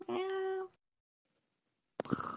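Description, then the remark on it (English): A person imitates a cat with one drawn-out, clear meow, then falls silent for over a second before a second vocal meow begins abruptly near the end. “No, I'm just meowing.”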